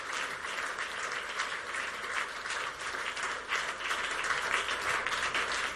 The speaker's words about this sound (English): Clap your hands. Bless the Lord.